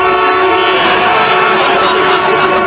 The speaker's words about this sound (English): Honk if you hate Labor Day.